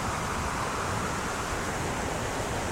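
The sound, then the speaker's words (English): A steady, continuous rush of flowing water, with many small streams breaking off, trickling and running together, and an even, unbroken hiss and no voices. “Lots of little streams break off, going their own individual ways.”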